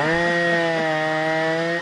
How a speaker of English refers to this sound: That's actually a chainsaw. That's the chainsaw.